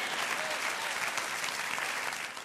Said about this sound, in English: Come on, clap your hands and say amen to that.